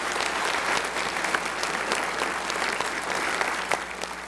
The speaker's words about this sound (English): Give them another round of applause, would you please?